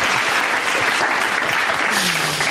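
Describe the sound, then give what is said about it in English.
A steady burst of applause, dense and loud, with many hands clapping at once in a continuous wash of sound for a couple of seconds. “Let's get the claps going again on that one.”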